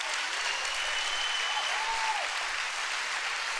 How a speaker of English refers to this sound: Can somebody clap your hands and say, I like that?